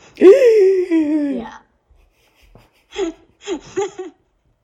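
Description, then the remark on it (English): A loud, drawn-out voiced gasp of surprise, falling in pitch. After a short pause come three quick, softer breathy vocal bursts. “Level 99, and then the gasp comes and it goes all the way down to like 3.”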